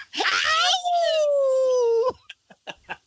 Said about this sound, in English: Not to mention, it has probably one of the most underrated howls